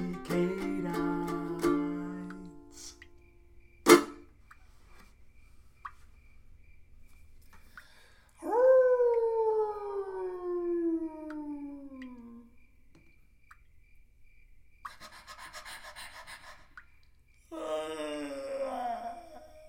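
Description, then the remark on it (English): A person howls like a dog in a few drawn-out, wavering cries, the longest sliding slowly downward in pitch, with short pauses between them and no talking. “Let's just find a time to be canine.”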